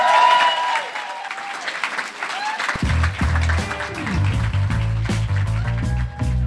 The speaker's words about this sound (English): I want you to applaud him for his tolerance, his respect, and for his fucking demons!